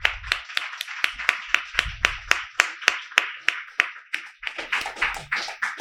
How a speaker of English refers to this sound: Thank you. More applause